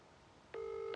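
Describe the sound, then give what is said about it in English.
After half a second of quiet, a steady electronic telephone tone switches on and holds, clear and fairly loud, as a phone call is placed to a person who is not available. No one speaks. “Hello, sorry, but the person you've called is not available.”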